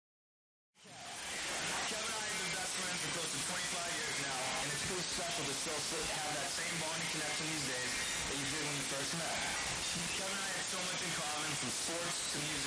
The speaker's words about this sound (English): So it's just pure static, and in the background, you can hear.